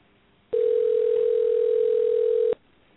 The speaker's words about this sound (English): Maybe I can get her on her phone. So if you hear ringing